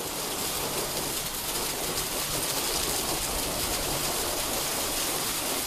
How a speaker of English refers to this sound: Got a little bit of hail coming in.